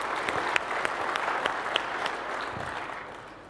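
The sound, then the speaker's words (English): A crowd applauds the launch partners Ping Identity, Auth0, RSA, ForgeRock, Okta, IBM Security and OneLogin, steady dense overlapping claps with a few sharper ones popping out, holding at moderate loudness before gradually tapering off toward the end. “So a big round of applause for these folks for making the internet a better place.”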